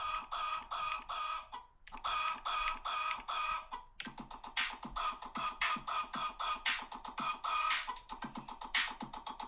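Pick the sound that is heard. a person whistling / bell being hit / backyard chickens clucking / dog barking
backyard chickens clucking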